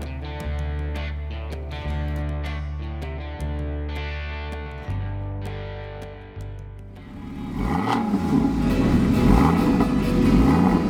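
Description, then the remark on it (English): A car engine revs loudly, its pitch sweeping up and down in repeated surges, following a few seconds of steady droning tones that shift in stepped jumps. “in its entirety, vroom vroom and everything, is my conversation with Katie Effin Compton in Cyclocross Stars in Cars”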